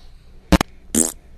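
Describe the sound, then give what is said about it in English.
A pair of short, buzzy fart sound effects played on a soundboard during a test, the first a quick double sputter and the second a slightly longer, raspier blast, both loud with no talking. “Wow, that was like a robot fart. I'm doing soundboard tests.”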